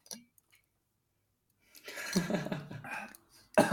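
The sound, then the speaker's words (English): After a brief click and a pause of silence, the speaker breaks into a short run of muffled, rough coughs, ending with one sharper burst. “1 second, because I'm going to start coughing.”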